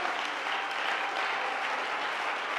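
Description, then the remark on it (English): An audience at a Wednesday night church service claps in praise to God, a dense, even wash of many hands applauding with no break, moderately loud throughout and no voices standing out. “Somebody clap your hands to him and give him praise.”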